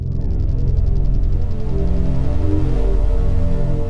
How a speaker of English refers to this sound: That ambient drone wash is a composite of a number of different parts. Let's listen to them one by one. Now I'll play you three samples. These all come from the Ableton library. The first one is called Lamette, and it sounds like this.